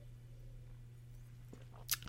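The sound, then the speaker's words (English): A quiet sip from a drink, a short wet slurp near the end, over a steady low electrical hum with no talking. “I'm going to take a breath here and take a little sip of something that'll be refreshing to my throat, and then I'll be right back.”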